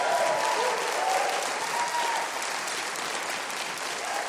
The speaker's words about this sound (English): How about a little hand of applause for this great band over here